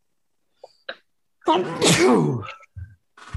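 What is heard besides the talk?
sneeze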